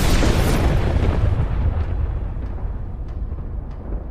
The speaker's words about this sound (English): And when a super high-voltage power line with no rubber around it gets too close to a tree, zap! And in fact, it can be actually more violent than what you described. That's an arc flash, or looks like a lightning bolt, basically.